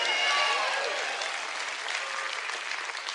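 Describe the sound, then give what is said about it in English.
Four people clap together in a steady patter of hand claps that holds for about three seconds at a fairly constant level, thinning slightly toward the end. “There's 4 people clapping.”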